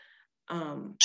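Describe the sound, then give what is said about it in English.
A single sneeze: a short voiced, breathy build-up followed by a sharp, hissy burst at the end. It's fairly loud and stands alone, with no talking over it. “Bless you.”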